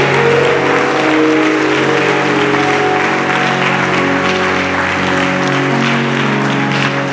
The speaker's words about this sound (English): Come on, let's celebrate Jesus is in this place. Clap your hands unto God, all you people. Yay!